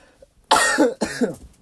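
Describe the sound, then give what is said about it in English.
Two harsh, loud coughs burst out back to back, forming a brief coughing fit with a short quiet lead-in and no talking. “My fucking cough is crazy.”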